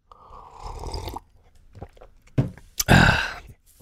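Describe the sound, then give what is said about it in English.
A long, airy slurp of hot tea, then a couple of sharp clinks or knocks and a loud, breathy exhale afterward. No one speaks. “Let me get a sip of tea here.”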